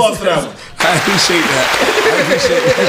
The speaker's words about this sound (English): Give him applause for that. Give him applause for that.